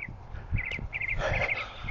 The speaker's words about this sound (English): Boy, hear that bird.